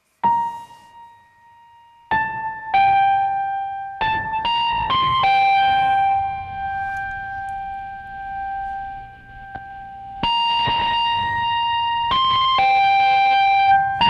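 Piano notes played through a Dumble-clone amplifier, ringing out with a slightly overdriven tone, echoed by a two-tap delay and washed in natural reverb. Notes arrive in small clusters, with one held chord sustaining long between them.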